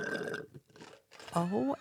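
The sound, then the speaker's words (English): Loud slurping through a straw at the bottom of an empty iced coffee cup, right on a microphone, a gurgling, warbling rasp that rises and falls near the end, preceded by murmuring, rustling noise. “slurped his empty iced coffee on the mic, as we all heard.”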